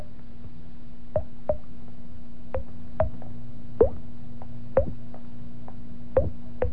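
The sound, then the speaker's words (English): A voice imitates water drops with about nine sharp, hollow plops at uneven intervals, clear over a steady low hum, with no talking. “now he was the best water drop man in the business.”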